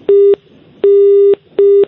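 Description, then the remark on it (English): A telephone engaged tone on a call dialled to Belarus (country code 375): three steady, buzzy mid-pitched beeps with silent gaps between them, the middle beep held about twice as long as the others. Loud and clear, with no voices. “That's engaged, is it?”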